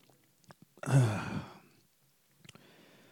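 Drinking sounds: a few soft clicks and slurps, then a single breathy, satisfied exhale, followed by faint clicks near the end. No one speaks.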